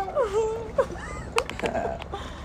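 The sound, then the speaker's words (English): A person imitates a small pet dog's yippy bark with high, whiny yips and whimpers: several short wavering vocal cries and a couple of sharp bursts, moderately loud, with no real speech. “I really like how we just started doing dog noises.”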